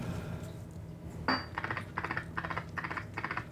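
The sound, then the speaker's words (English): Keys on a computer keyboard are pressed, including Enter to start a computer horse-racing game, in a quick irregular run of clicky taps, starting with one sharp higher click, then several bursts of typing over a low background hum. “Press enter first.”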